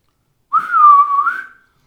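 A single sustained whistle, clear and fairly loud, holding a steady pitch with a slight waver for about a second before fading out, heard alone with no talking. It is a sound effect of a sleigh driver whistling to his team, made during a reading of a Christmas poem.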